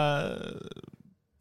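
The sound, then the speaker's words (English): A single fart, opening with a low buzzing blast that quickly breaks into a rapid, sputtering flutter before trailing off into silence. “Farting, flatulence, flatus. That's today's topic.”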